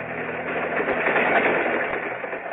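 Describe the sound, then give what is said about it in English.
A steady, continuous mechanical rumble and rushing noise, like a train in motion, fills the whole stretch at an even, moderate level with no voices. “Now they're on a train following the ceremony on their honeymoon.”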